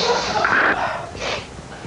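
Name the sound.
loud sniffing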